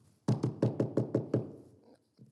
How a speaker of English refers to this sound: Okay, maybe if I just pretend, they'll go away. And they just keep knocking, keep knocking.